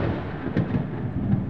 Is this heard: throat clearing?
no